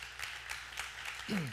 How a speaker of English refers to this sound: You've never been to a Buddhist country. That's why you're clapping like that. You're like, yeah, good for them.